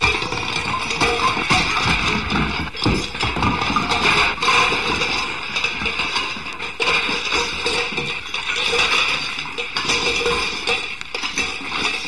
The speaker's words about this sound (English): Hark! Hear the sound of a distant waterfall. And as we walk down a quaint country path, we can begin to hear the water cascading down the mountain into the stream below.